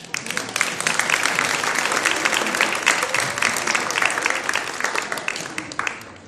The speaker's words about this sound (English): Shall we give her another clap?